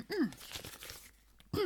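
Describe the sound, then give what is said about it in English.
Papers rustle and crinkle softly for about a second as letters are handled, framed by two short gliding vocal sounds, like a drawn-out 'oh', at the start and end. “Look at all the paper.”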